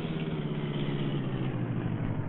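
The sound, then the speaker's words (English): A car engine hums steadily, a low continuous rumble with a faint rise as the car stops and turns around on a street, no voices present. “Stop and turn around, quick.”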